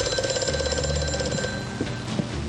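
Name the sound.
telephone ringing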